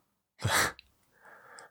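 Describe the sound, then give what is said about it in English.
A single sneeze bursts out fairly loud, a short sharp blast of breathy noise, followed by a quieter trailing breath or sniff afterward. “Bless you.”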